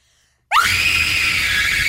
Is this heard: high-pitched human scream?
yes